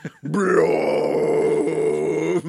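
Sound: loud burp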